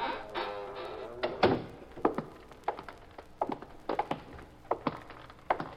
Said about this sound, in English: The side door is open. Push it and go on in. All right, shut the door and walk down to the far end.